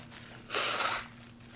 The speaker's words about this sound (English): Oh god, I gotta blow my nose again. Hang on, I'm dying.